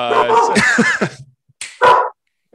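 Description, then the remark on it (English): A dog barks and yips: a run of excited, whiny vocalizing, then a pause and two or three sharper, loud barks, with no one talking. “That's right, your dog knows.”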